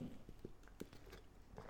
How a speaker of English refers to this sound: So, take another sip of water.